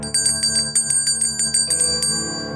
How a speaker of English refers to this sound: The bells.